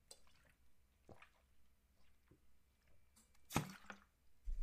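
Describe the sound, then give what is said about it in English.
Wet drinking sounds as a person takes a swig of bottled vitamin C smartwater: a few soft liquid clicks and squishy gulps, then a sharper sloshing burst near the end as water moves in the mouth and throat, with no talking. “Let me take a swig of my vitamin C smart water.”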